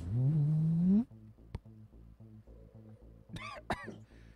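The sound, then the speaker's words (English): A voice imitates an Ogeron creature coughing from smoke: a loud, drawn-out rising groan, then several sharp, hacking bursts spaced apart over a low, steady rumbling background. “Yeah, you hear the Ogeron start to cough.”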